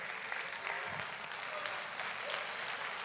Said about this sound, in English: Everybody stand up and clap your hands and give God praise.